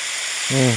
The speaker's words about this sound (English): There's a, heavy rain pouring, and it's a golf course.